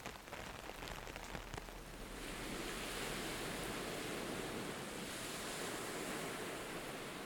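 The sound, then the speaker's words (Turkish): Steady rain patters onto a cafe awning, a dense hiss of drops with a few sharper individual taps early on, then settling into an even, continuous wash with no voices. “Yağmur damlaları oturduğumuz kafenin tentesine vurmaya devam etti.”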